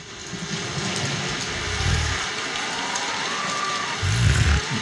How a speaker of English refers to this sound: This is through a sleep pillow. Do you want to hear it? A proprietary blend, as it were? Yeah, yeah, it is a lightning storm. It is raindrops falling and wind.